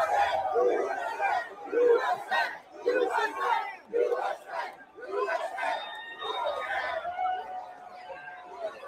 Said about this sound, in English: Oh, I know, dude. Like the crowd goes nuts at UFC for him. Yeah.